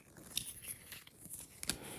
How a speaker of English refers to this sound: Let me shuffle this. Hold on.